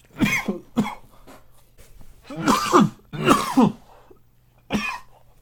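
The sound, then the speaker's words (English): A run of harsh coughs after vaping a nutty, fruity pudding-flavoured e-liquid with 6 mg nicotine and a strong throat hit: two quick bursts, then a pair of heavier, rasping hacks and one last short cough, with brief pauses between. No talking. “I don't know if it's from me coughing or the nicotine is different in here, but I feel like I have a nicotine buzz already off of 6 milligrams nicotine, which I never get.”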